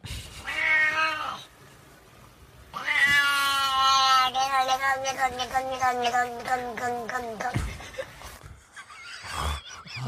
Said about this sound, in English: Like, is this cat racist?